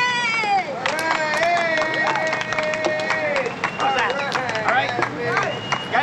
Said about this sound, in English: is like walking with a dude on the streets of Vancouver who's doing like a goofy Elvis impression, and when he finishes, you hear Dennis Hopper and the whole crew like applaud that guy, and he's like, did I do good? And they're all like, yeah, yeah.